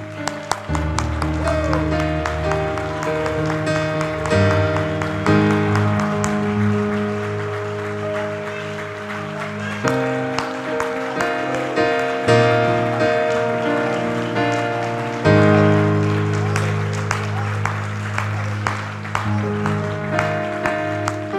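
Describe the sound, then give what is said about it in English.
A large crowd claps their hands as loud as they can, in praise after a prayer, a dense crackling wall of hand claps that carries on for twenty seconds over sustained music. “Come on, I want you to really clap your hands as loud as you have.”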